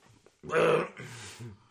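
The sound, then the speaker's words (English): A single loud, throaty burp after drinking moonshine, imitating Rick from Rick and Morty, a rough low rumble lasting about a second before trailing off into a softer breathy tail. “Do it. Do the burp.”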